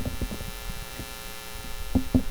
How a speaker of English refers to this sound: major buzz walking in here. It's as soon as I went right here. I don't see any electrical. Whoa. Yeah, there's no electrical hookup in here. It's not hooked up. Oh, it's just right in the doorway. It's a major hum.